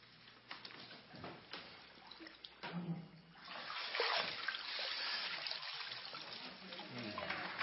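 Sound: water splashing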